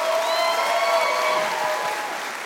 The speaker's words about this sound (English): Come on, give Jesus a better hand clap, everybody. Come on, if you really love him, give him your best.